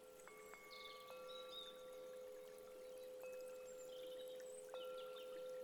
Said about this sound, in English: a small stream is nearby, and you can hear the sound of the water as it flows over the rocks.